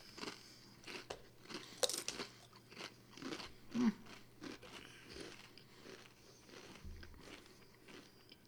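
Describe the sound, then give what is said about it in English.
Trader Joe's waffle-cut potato chips being bitten and chewed, a loud crunch followed by a string of irregular crackly chomps over several seconds, with no talking. “So these are the Trader Joe's potato chips. They have a cool waffle effect on them.”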